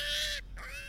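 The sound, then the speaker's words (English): A pig squeals in two shrill, high-pitched bursts split by a brief pause, the first louder and harsher than the second, with no talking over it. “That's a pig sound”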